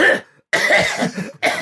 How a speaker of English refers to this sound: Oh, that was three coughs. Put more coal on there.